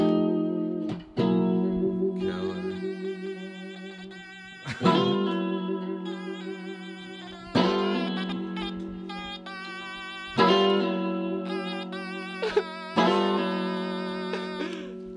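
A stylophone with fresh batteries plays buzzy, sustained electronic tones to start a jam, shifting to a new pitch every few seconds in a slow stepwise melody, steady and fairly loud with no voices.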